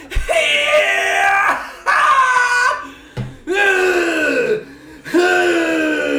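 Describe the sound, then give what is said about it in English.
A voice imitates an umpire ringing up a batter who struck out looking, with four loud, raspy, drawn-out shouts, each about a second and a half long, with the pitch sliding downward in the later ones. “Somebody strikes out looking. What's the noise you make? How you ringing them up?”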